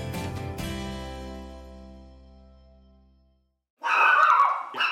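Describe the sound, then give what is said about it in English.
A fading musical tone gives way to a brief silence, then a puppy named Carlos, about nine months old, lets out a short, high-pitched burst of barking from his kennel, fairly loud, lasting about a second. “That's a cute little pup there.”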